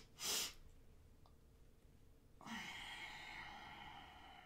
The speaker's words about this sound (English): Some of them that really work are the physiological sigh. It's when we breathe in through our nose, two or three sniffs, and then we hold it and we do a long out through the nose. So it looks like this.